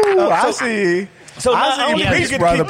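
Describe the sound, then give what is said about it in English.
A person imitates a wolf howl with drawn-out, wavering vocal tones, pauses briefly, then carries on with more strained, animated vocalizing, fairly loud. “I'm a wolf. Check this out.”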